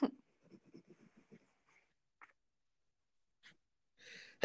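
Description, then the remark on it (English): A single sharp sneeze bursts out near the end, after a stretch of soft, rhythmic scratching or rustling and a few faint clicks. “Oh, I just sneezed.”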